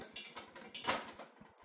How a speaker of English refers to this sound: On top of that, what you hear rattling is a popcorn popper.